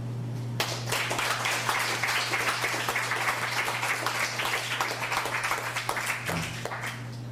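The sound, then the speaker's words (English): An audience applauds steadily for several seconds after a poem reading, a dense wash of overlapping claps with no voices, holding a fairly even level before tapering slightly at the end. “As we bring up Raven Adamson, let's give Eric Folsom another hand.”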